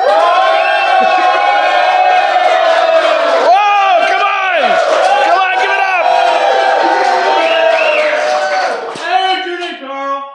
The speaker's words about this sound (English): Wow, there are so many people here. They're just spilling out into the hallway. It's amazing. What a big crowd. And they're enthusiastic, too. And very enthusiastic.